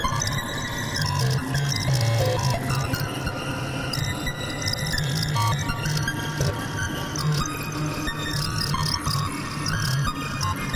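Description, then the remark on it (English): A dense, continuous modular synth feedback texture of buzzing, shifting tones layered with fluttering, clicky pulses, the Pico R&D clock modulated by the Kitty Eyes trigger output and its sample and hold sent to the Pico VCO wave CV; steady and fairly loud throughout with no voices. “I'm just multing the trigger out, which I'm using to send into the VC F3DB, just to go into the clock input of the Pico R&D as well. So we get some clock modulation.”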